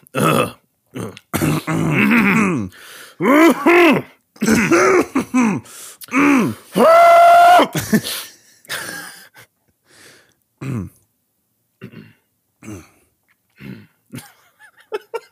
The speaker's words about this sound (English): I have to cough. No, I have to cough. Oh, God. Oh, fuck. COVID. Okay. I'm good.